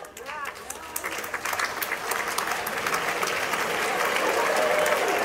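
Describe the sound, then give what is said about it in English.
Audience applause from parents at a graduation ceremony swells steadily, many hands clapping in a dense, crackling wash that grows louder and fuller over several seconds, with a few voices mixed in at the start. “Parents are applauding, graduates are not.”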